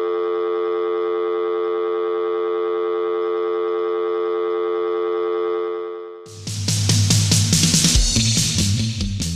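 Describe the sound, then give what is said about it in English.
An ambulance siren sounds loud, holding one steady, unwavering tone for about six seconds before a sudden loud burst of music cuts in over it. “Send me an ambulance right now, okay?”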